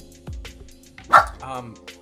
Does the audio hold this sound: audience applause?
no